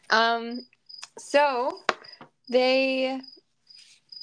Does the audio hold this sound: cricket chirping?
yes